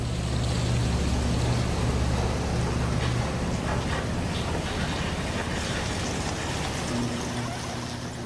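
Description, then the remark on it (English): A loud, steady roar of rushing floodwater from five major rivers in Virginia at flood stage all at once fills the whole stretch. It is a dense hiss with a deep low rumble and droning hum underneath, with no voices and no pauses. “So in the section where you hear the waters rising and electrical lines snapping and stuff, that's actually the sound of five major rivers in Virginia at flood stage all at once.”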